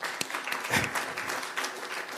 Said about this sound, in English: And we have our first gay female president on this campus, and that deserves a big, big clap.